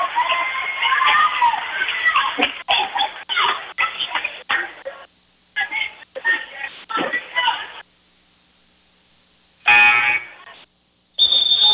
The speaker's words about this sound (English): They didn't get the indication at the scorer's table. Hit the buzzer there to get the official back.